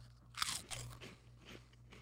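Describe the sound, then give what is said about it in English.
Crisp crunching of a Romanian pizza-flavored Puffaletti puffed cheese snack from Star: a sharp first bite followed by a few softer chewing crunches over a low steady hum, with no talking. “It's dissolving. It just straight up dissolved. I haven't swallowed, and it's like not a cheese puff.”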